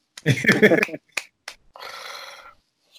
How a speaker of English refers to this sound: And that is my recommendation. I clap.